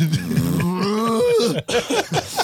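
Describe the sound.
A man's voice imitates a moose call, a low, drawn-out, cow-like moo that wavers in pitch for over a second, followed by a few quick spoken words.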